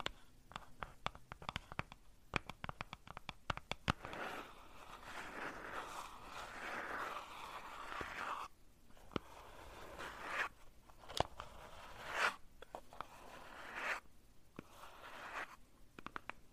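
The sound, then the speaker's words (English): Crinkly crunching and rustling as a squishy paper-wrapped cardboard box is squeezed, with sharp clicks early on, then dense crackling bursts separated by brief pauses. No talking. “The inside is squishy paper wrapped cardboard box.”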